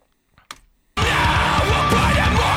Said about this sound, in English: And they do scream because there's a screamer in the band. Like, oh, yeah. But it's that more melodic screaming.